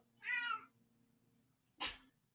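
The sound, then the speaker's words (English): A cat gives a single short, fairly quiet meow, followed after a pause by a brief scuffing burst of noise; no one speaks. “Sorry, it's another cat.”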